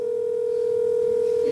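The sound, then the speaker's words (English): A steady, unbroken telephone ringing tone hums at one pitch for the whole moment, clear and fairly loud, as a contestant's parent is called from the contestant's phone, with no voices. “Some of the show segments include going through the contestants' phones and calling their parents.”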